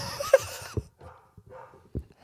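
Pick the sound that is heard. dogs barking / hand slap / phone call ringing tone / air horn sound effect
dogs barking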